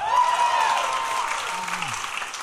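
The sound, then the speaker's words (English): An audience at a live movie quiz breaks into loud, sustained applause after the film Saving Mr. Banks is named, a dense wash of many hands clapping that holds steady throughout, with a faint cheer or voice briefly rising beneath it. “It's a mix of excitement for the right answer, but also the bigger applause for the movies they like.”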